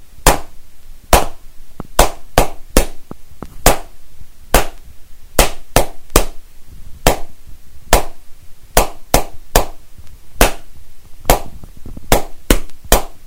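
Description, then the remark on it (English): A sharp, loud clapped rhythm beat copying a tune tapped out by crayons, with about twenty crisp claps in grouped patterns of quick pairs and longer gaps, repeating steadily. No one speaks. “So you listen to the sounds and then you're going to clap it out in exactly the same way.”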